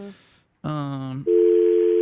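A telephone line hums through the receiver: a short buzzy electronic tone, then a steady, loud dial tone that holds to the end over faint line hiss.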